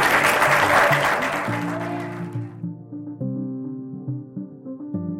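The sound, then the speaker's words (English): Audience applause for a panel of expert guests: a dense wash of clapping that fades out over a couple of seconds as a melodic music track rises and continues alone with steady, sustained notes. “Well, let's give a big round of applause for my expert panelists who are here.”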